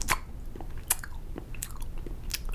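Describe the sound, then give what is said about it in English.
Loud, wet chewing of a whole piece of gum, eaten with its wrapper, chewed in front of another person during a stare-down, with a handful of sharp smacking clicks at an uneven pace over steady mouth noise and no talking. “and I took this whole piece of gum, and I just shoved it in my wrapper and everything, just ate it, and I shoved it in my mouth, and I chewed it right in front of him.”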